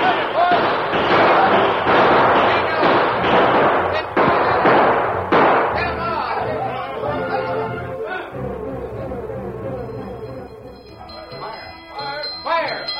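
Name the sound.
gunfire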